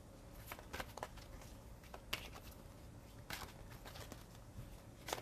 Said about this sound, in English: Okay, I might have to switch a little bit and maybe kind of go with an approach where I pull some cards so that this isn't too extended of a reading, but I'll keep doing my little shuffling thing and we'll see what happens.